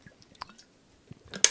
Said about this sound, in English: What are you doing over there? I'm going to suck on a cough drop a little bit while we do this.